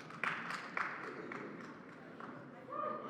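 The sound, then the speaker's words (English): Two people clap sparsely and irregularly, sharp and moderately loud, over a low murmur of background voices, fading out after a short burst. “Two people started clapping just now.”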